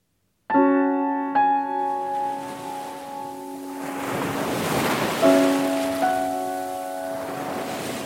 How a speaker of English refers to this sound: At Marva, by the sea, we draw deep breaths. We keep our eyes wide berthed to check the sea's delinquency, its randomness. There are no cast-off islands here, no belted reefs to mute the hammer blows of the sea's brute force, its high-handedness.